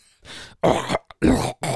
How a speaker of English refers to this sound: Fucking clear your throat